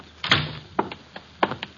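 household object, door closing

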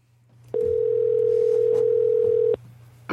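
signal or alarm, telephone line ringing

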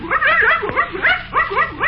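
animal, dog barking

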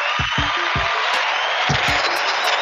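crowd, applause

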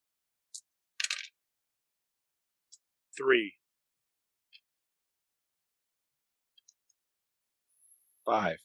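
dice being rolled

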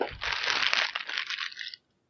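household object, plastic bag crinkling

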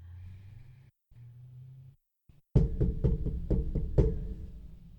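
impact, knocking on a door

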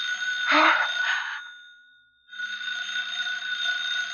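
household object, telephone ringing

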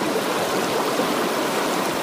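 nature, rushing floodwater

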